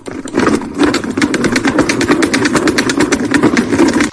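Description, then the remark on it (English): A salad spinner whirs steadily for about four seconds, its basket rattling with rapid, evenly spaced clicks over a low rumbling drone. It stays fairly loud throughout, with no voices. “The beautician is... Salad spinner. Go.”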